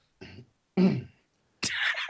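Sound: cough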